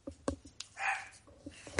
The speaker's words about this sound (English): Sorry, dogs are barking.